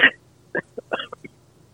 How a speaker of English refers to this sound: I'm over here, I'm coughing like I got corona, but I don't.